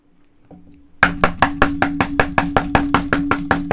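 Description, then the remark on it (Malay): Loud, rapid knocking on the door of an entertainer's house during a surprise visit by a TV crew, about fourteen hard, evenly spaced blows in a steady fast rhythm after a second of near silence, with a faint low hum underneath and no talking. “Kau nak ketuk rumah aku sampai pecah ke apa?”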